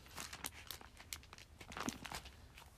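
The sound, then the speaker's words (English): Soft rustling and crinkling of thin pages of a paper Bible being flipped, several quick swishes in an irregular rhythm, quiet overall with no voices. “You hear my Bible pages turning? Got a paper Bible today.”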